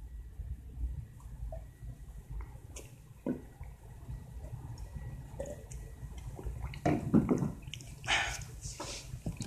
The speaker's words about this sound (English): Before we do that, let me get a sip of water.